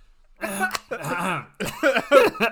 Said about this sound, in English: Let me clear my throat.